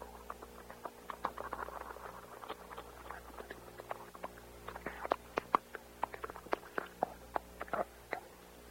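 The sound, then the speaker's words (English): A sound effect of a monster slurping: wet, sticky slurping and smacking noises, a rapid irregular run of short clicks and squelches that grows a little busier partway through, fairly quiet overall, with no voices. “A slurping sound.”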